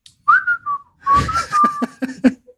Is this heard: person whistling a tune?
yes